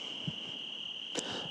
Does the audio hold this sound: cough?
no